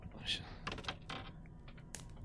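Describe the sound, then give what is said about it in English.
Dice are swapped and rolled, clattering and clicking in a few quick sharp taps and rattles spread over a couple of seconds against a low background murmur. “It's time to change dice.”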